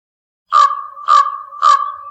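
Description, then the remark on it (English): A raven gives three harsh, croaking calls in a steady, evenly spaced rhythm, fairly loud, with nothing else audible. “Raven.”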